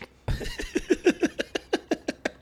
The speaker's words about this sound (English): And I'm like, y'all never had a St. Bernard. This dog sneezes another time.